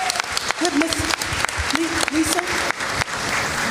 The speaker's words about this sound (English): Well, let's let the community, at least in a show of applause, give you some support right now. And we feel sorry for your loss.